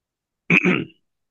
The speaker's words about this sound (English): Yeah, you can cut out me coughing, sorry.